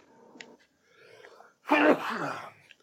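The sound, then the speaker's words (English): A single loud sneeze bursts out after a few seconds of faint breathy sounds, then trails off into a short rough exhale. “Bless you.”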